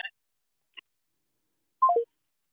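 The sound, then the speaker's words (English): A phone sounds with short electronic tones as an incoming call from the speaker's mother arrives: a brief beep, a tiny blip, then a quick descending three-note chime, fairly quiet, with no voices. “I just had a phone call.”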